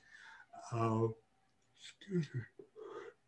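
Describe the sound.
A single drawn-out, voiced yawn, loud, with a breathy onset swelling into a sustained groan, followed by a few softer mumbled vocal sounds and breaths.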